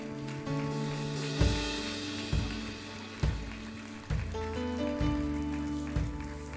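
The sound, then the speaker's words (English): A church audience claps to give praise to God in a dense, steady wash of applause over sustained organ-like musical tones, with heavier accents landing roughly once per second. “One more time, would you clap and give God praise in this house?”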